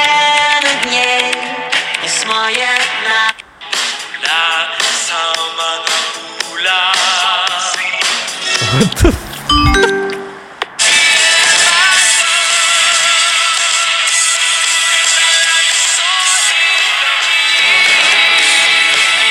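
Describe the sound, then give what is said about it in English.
A song from a video plays loudly and continuously, with a brief dropout and a few sharp percussive hits midway before the music returns fuller and brighter. No one speaks over it. “It's beautiful. We should steal this song.”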